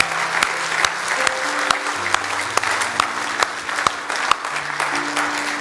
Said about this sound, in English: Can you give the Lord a hand clap of praise this morning?